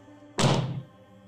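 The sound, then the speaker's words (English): A single heavy slap of a stack of papers, presented as evidence for Bigfoot, hitting a table: one loud, dull thud with a brief papery crack, fading quickly into quiet. “That was my evidence slamming on the table.”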